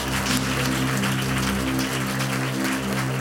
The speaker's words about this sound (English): If you believe it, clap your hands and bless God. Oh, I can say, clap your hands and bless the name of the Lord.